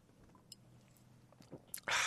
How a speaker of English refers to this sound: There's just one. Oh, barely one sip. If you were in the desert and that's all you'd had, you'd just break down and cry.